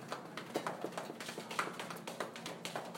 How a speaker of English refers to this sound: And now pat out your right leg.